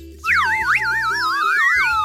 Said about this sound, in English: We all get to listen to slide whistles doing bad versions of the SOS for like 4 minutes.